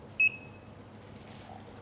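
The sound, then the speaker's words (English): A single short, high-pitched electronic timer beep sounds near the start, crisp, as a timer is started for brewing coffee, followed by a quiet background with a faint lingering tone fading out. “I'm going to start the timer, and I'm going to add my 240 grams of water.”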